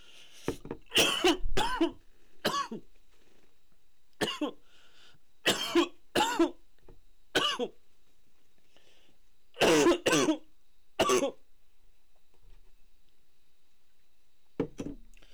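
A person coughs repeatedly in loud bursts, clustered in groups with short pauses between them, then one last faint cough after a quiet stretch.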